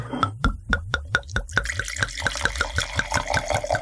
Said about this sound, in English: Shall we try? We shall try. Okay. Yes. I'll give you a little pour here, Mayor.